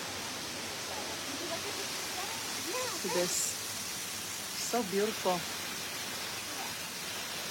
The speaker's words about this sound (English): I'm here at the jungle. We are at the waterfall.